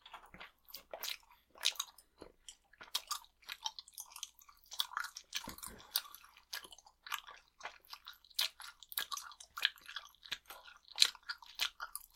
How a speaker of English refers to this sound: Oh, there it is. I wasn't even chewing on this cherry part. It just got sucked in the opposite end of the glob.